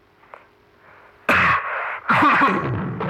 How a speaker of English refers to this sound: He rasped into the recorder, his voice breaking into a peal of static. When it returned, he was coughing.